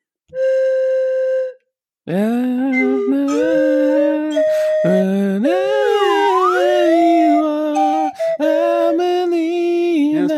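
A slide whistle plays a melody: one steady held note, a short pause, then a continuous stream of sliding, swooping notes that rise and fall, loud and breathy, with no voices.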